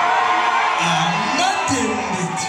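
A concert crowd at Symphony Space in New York City, many of them Congolese, welcomes the performer, cheering loudly and steadily with whoops, yells and shouting voices rising over a dense wash of applause-like noise that holds for the whole stretch.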